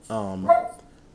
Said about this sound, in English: my dog sees people walking outside my house and starts to lose his shit.